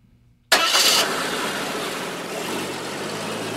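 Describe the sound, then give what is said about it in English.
A car engine cranks and catches with a sharp burst after a brief quiet moment, then settles into a steady rumbling idle that continues to the end. “Backseat of a car, sleepy with sun.”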